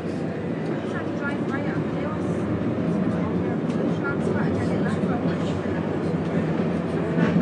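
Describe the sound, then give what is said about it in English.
A light rail train rumbles past in a steady, dense low roar that holds an even loudness throughout, with faint wavering squeals and indistinct voices mixed into the noise. “This is a light rail system.”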